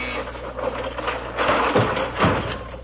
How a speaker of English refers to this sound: Well, I'll be. The furniture went right back into the wall. Yeah, and your mother was in one of the chairs.